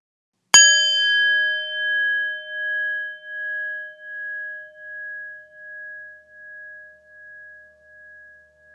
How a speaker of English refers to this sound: So why don't we get started? So at the sound of the bell, we will begin.